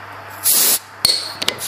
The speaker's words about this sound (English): Now, if I got the carbonation process right, then this should have a nice little fizz.